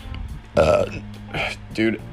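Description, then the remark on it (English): A loud burp, drawn out for nearly half a second, followed by two shorter, gruffer vocal bursts against a faint low background hum. “If I don't burp in a podcast episode, something's wrong.”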